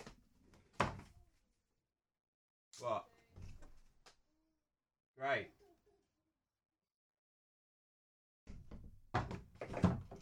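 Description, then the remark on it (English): A door opens and closes, with a few clunks and thuds separated by quiet pauses, while a person speaks briefly. “Hold on, someone's at the door.”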